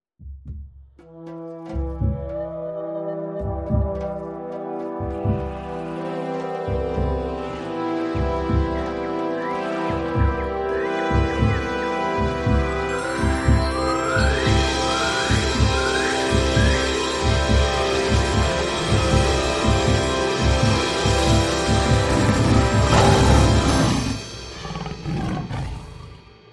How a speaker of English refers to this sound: for creating this amazing intro and outro for this podcast.